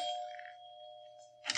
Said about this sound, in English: We took the elevator up and rang the bell.